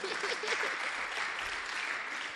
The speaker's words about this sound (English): Clap for me.